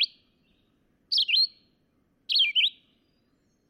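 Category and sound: bird, red-eyed vireo song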